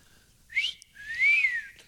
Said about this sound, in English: Here's the whistling demo.